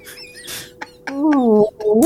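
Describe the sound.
A voice imitates a whale call, starting with breathy, squeaky bits and then a long, drawn-out moaning tone that glides up and down, pausing once before rising again.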